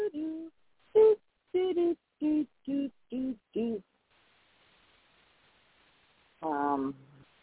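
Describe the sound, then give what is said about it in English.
A single voice hums the Jeopardy theme tune: a quick run of clipped notes, a brief pause, then one longer held note to finish. It is fairly loud, with no other sounds. “See, now if y'all didn't know, I was humming or whatever the Jeopardy tune, but it probably sounded like something else if I'm tone deaf as shit.”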